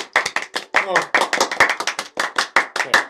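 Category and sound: crowd, people clapping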